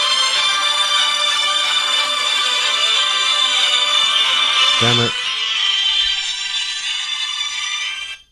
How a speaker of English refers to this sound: That was your phone, I think.